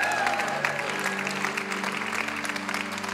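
An audience at a church in College Station, Texas claps and cheers in a dense, steady wash of applause that holds evenly throughout, with a high whistle early on and sustained low musical tones humming beneath.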